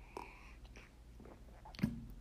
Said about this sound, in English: And my throat needs a little bit of lotion now. You get to hear me swallowing.